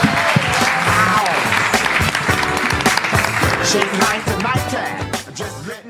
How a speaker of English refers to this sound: One more round of applause for our panelists. Thank you all so much for being here.